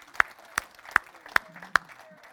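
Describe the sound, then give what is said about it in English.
An audience claps in unison to thank the Lord: five sharp, evenly spaced claps in a steady rhythm, with a faint murmur of voices underneath. “Now, will you give the Lord just a big clap and thank him?”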